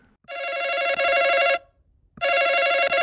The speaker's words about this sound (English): That's Family Feud. That's the center podium sound when you buzz in on Family Feud.